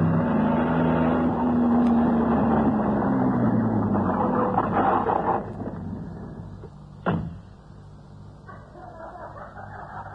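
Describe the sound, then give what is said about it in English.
A car engine rumbles and winds down as the vehicle slows to a stop, the idle fading to a quieter hum, followed by a sharp clunk like a door. “Spotlighted in the glare from the car, they embraced and kissed, and the girl fumbled in her purse for a key.”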